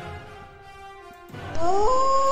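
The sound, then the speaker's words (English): A person lets out a loud, drawn-out wolf-like howl that swoops upward in pitch, following a quieter sustained tone, with no talking over it. “Double A-U, triple A-U, wolf face, wolf face, wolf face.”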